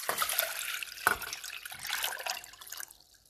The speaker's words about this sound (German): Ja, ich mache nur heute wieder mal was zu essen. Also erstmal muss ich Wasser umfüllen in einen Topf, 1 Liter.